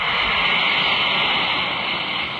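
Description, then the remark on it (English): An Alka-Seltzer tablet dropped into a glass of water fizzing: a steady, loud, bright hiss of bubbling that holds constant without pauses, with no voices. “Now listen as an Alka-Seltzer tablet is dropped into a glass of water.”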